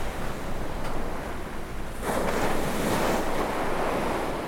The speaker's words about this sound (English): Maybe the sounds of the waves will take you on a boat far away from your trouble, far away from the hassle, to a place with no stress and no worry.